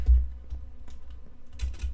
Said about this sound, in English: Bro, Arrow, quit using an auto clicker.